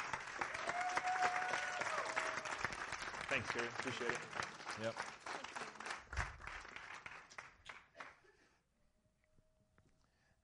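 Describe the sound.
A church audience breaks into sustained applause and cheering for a woman being thanked for her service, a dense wash of clapping with a few whoops that fades out after about eight seconds, while a man speaks briefly over it; children are cheering downstairs too.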